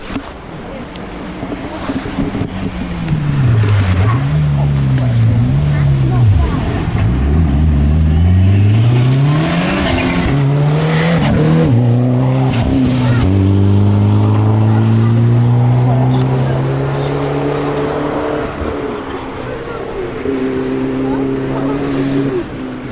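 A Toyota RAV4 SUV safety car drives through a hairpin, its engine dropping in pitch as it slows, then revving back up and droning steadily as it pulls away, loud throughout.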